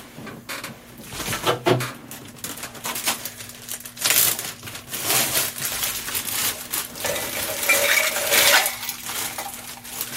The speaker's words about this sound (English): Okay, so let's get some ice. I'm using a shaker tin. We're going to stir it, and then we'll just pour it in our glasses.